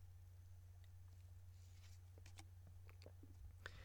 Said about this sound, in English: As I take a sip of coffee here.